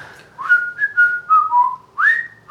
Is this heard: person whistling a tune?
yes